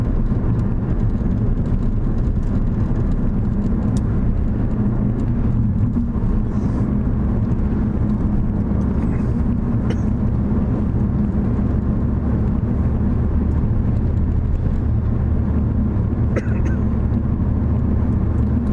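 Steady low rumble of road noise inside a moving car, a constant engine and tire drone filling the low end with faint rattles and clicks on top, no talking.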